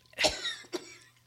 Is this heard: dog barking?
no